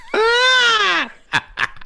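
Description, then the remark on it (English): A voice imitates the Wilhelm scream: one loud, sustained, strained shriek lasting about a second that swoops slightly up and then drops off, followed by a few short breathy bursts like chuckles. “And then you throw one Wilhelm scream in there.”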